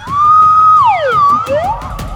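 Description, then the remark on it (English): A slide whistle plays loud: a steady held note, then the pitch swoops down, glides back up, and dips again, with faint background rumble and no talking. “Oh, it's a slide whistle.”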